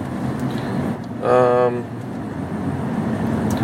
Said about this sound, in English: Yeah, just getting, yeah, a little traffic here left. Let's see, about to get off.